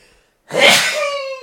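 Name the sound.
sneeze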